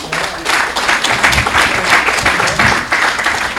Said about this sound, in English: That's how much of an impressive result it was. Give her a big round of applause, please.